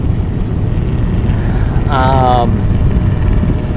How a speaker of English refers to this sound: Might have to wait till the helicopter passes.